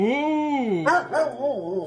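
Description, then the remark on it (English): A dog gives a long, wavering whine that breaks into a few sharp, excited barks and yelps, loud and eager, with no other sounds around it. “Repeat what the dog's saying.”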